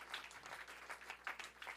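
An audience claps hands to Jesus during a sermon in a dense, continuous patter of applause, moderately loud and steady, with no voices over it.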